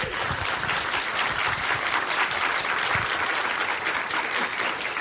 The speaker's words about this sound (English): Thank you so much, and just want to give everybody a quick round of applause.